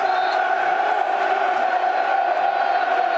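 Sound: football stadium crowd roaring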